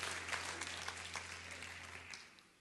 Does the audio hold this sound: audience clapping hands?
yes